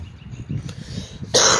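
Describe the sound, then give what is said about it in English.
A low, muffled rumble builds, then a sudden loud, harsh cough from the show's writer bursts in near the end. “Writer, stop coughing.”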